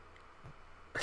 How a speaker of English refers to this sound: Bless you.